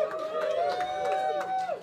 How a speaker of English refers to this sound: That amount of applause was depressing. I say that for two reasons. First of all, it totally was. I asked you for enthusiasm. You gave me woo. Yeah, that was worse. The second time was way worse.